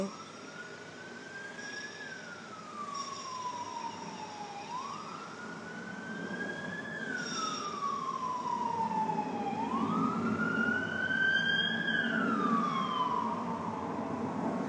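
A police siren wails in slow, rising and falling sweeps, about three cycles, over a low rumble of road traffic, growing slightly louder.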